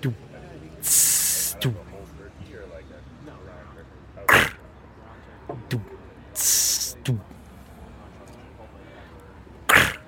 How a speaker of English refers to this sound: The first sound on that record is the, like, kind of tape hiss.